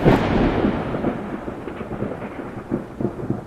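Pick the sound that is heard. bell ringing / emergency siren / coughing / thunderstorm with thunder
thunderstorm with thunder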